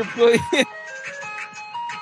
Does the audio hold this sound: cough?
no